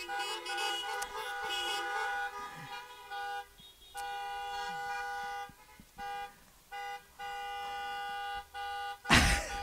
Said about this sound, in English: We got a charismatic brother over here honking his horn.